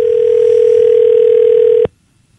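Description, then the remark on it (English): A steady, unbroken telephone dial tone, as a phone call is dialed early in the morning, hums at a low-mid pitch for almost two seconds, then cuts off abruptly into near silence. No voices are present. “Let me just dial this up here.”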